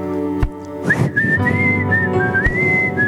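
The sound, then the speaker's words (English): A church audience whistles a worship song together, one clear sustained melody line rising and gliding over a dense, reverberant wash of many voices and instruments, continuous for several seconds. “Let me hear you whistle.”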